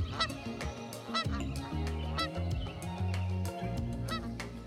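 A flock of Canada geese honks repeatedly, loud overlapping calls coming in quick irregular bursts over a steady low rumble, with no talking.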